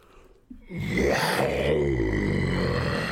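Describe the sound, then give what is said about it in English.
A voice imitates a lion's indignant roar after a bucket of water is splashed in its face: a single loud, throaty, sustained bellow rising suddenly after a brief quiet moment and holding steady for a few seconds. “The lion roared in indignation.”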